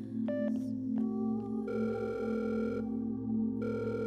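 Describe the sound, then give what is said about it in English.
A steady telephone dial tone hums throughout, with brief clicks and a brighter ringing tone layered in partway through as a call is placed. No one speaks. “I'll call”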